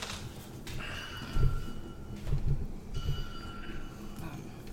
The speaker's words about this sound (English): Those are the sound. Change of sound. Those are him hammering at his thing and the echo sort of throughout this place.